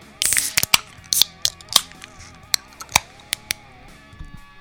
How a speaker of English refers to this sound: So let's go. Let's crack the beers.